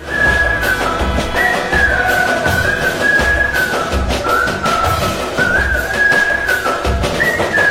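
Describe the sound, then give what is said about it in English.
A loud, bright whistled melody rides over steady military march drum beats in a busy, upbeat song, the tune wavering up and down with no voices throughout. “That was used across it with the whistling and the drumming.”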